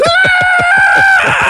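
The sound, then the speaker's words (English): A loud, sustained high-pitched scream held steady for over a second, then breaking into a rougher, strained cry at the end, a voice imitating panicked plane passengers screaming. “And alarms. Yeah. Yeah, alarms. And people screaming.”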